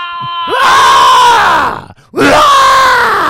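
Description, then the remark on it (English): A man imitates a rebel yell war cry: two loud, drawn-out whooping hollers with a falling pitch, separated by a brief gasp for breath. “That's a rebel yell.”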